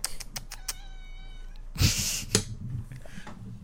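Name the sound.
cat meowing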